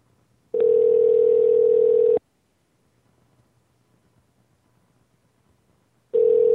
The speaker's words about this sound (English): I like part of the show where the phone rings.